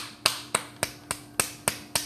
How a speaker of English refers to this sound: I give myself an audience and a stand-up clap for congratulations.